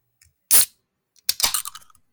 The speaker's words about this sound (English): So I am drinking a Liquid Death Bury It Alive, but I think I should still be able to get a can pop for you.